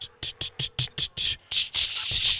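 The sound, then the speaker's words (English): A voice imitates a dial-up modem: about seven quick, rhythmic hissing bursts, then a longer, steadier rush of static-like noise, fairly loud and wordless. “Yeah, I'm making modem sounds now.”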